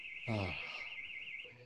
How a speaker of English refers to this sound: And that's a police, that kind of car alarm? No, it's just a car alarm. Happens a lot here. Even at night.